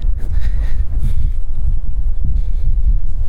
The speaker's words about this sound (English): Bit windy. You can probably hear the wind. I'm up on top of the building, so it is a bit windy.